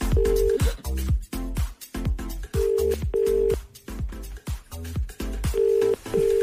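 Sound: telephone ringing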